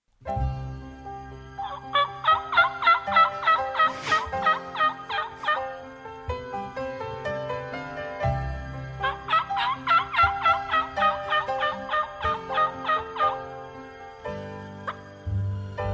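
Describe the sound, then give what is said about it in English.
A turkey gobble call sounds twice, each a loud burst of rapid, rattling gobbles lasting a few seconds, over a steady low rumble in the background. “The flip-flop flesher is eager to use that turkey call just right.”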